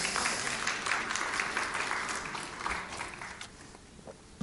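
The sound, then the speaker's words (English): A crowd applauds with dense, steady clapping that fills the whole clip, fading slightly toward the end. No one speaks over it. “They're clapping for you, cutie.”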